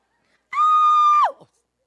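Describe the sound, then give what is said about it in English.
A single high-pitched soprano scream, loud, holding one steady shrill note for under a second before sliding down and breaking off into silence. “So we were like, I mean, I know I'm alto, but when I screamed, I was suddenly a soprano.”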